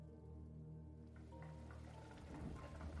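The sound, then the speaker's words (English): Rain patters steadily over a low sustained drone, starting soft and growing denser and louder toward the end. No one speaks. “Rain collapses.”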